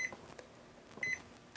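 A kitchen timer gives short, high electronic beeps as it is set for 4 minutes, one quick chirp and then a slightly longer double chirp about a second later, fairly soft, with no talking.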